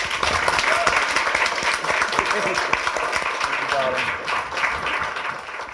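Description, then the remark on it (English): An audience breaks into sustained applause for the night's guests. It is a dense, steady wash of many hands clapping for several seconds, with a few faint voices or cheers mixed in. “But please do give a massive round of applause for our guest tonight.”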